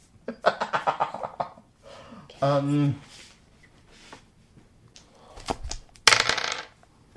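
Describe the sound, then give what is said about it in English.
Dice are rolled onto a table during a tabletop role-playing game: a quick run of hard clicks and clatters as they tumble and bounce, followed later by another sharp rattling burst, with brief voice-like sounds in between. “Oh, dice on that table.”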